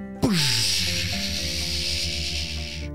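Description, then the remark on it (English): A spaceship's rockets launch into space, roaring to life with a sudden blast and a falling whoosh, settling into a loud, steady rush of hissing noise over a deep, rumbling drone that continues without pause. “The rockets roared and the Moonflower kids were pushed back into their seats as the spaceship's rockets launch them into space.”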